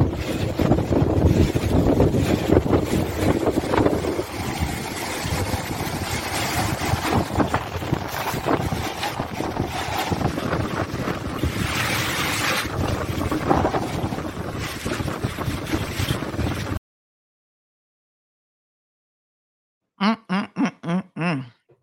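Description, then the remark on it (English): Loud, steady roar of strong wind buffeting the microphone over rough, churning water, lasting about seventeen seconds before cutting out abruptly; a short burst of voice follows after a pause. “No clue, because the whole thing looks like one massive amount of just water. And you can't, rough water, and you can't really tell the difference.”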